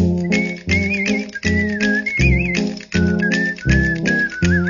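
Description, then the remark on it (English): An upbeat song with a wavering whistled melody riding over sharp, rhythmic clacking bones and sustained organ chords, steady throughout without any voices. “If he can't work the clackers, the bones just right, certainly could make it on a synthesizer and sound just like it”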